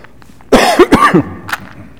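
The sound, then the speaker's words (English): A short fit of coughing: two or three harsh, raspy bursts in quick succession, followed by a faint throaty sound and then quiet. “It's a little cough drop, little mini ones that Shauna showed me about.”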